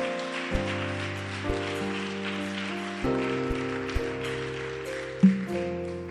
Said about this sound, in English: Why don't you glorify God with a hand clap?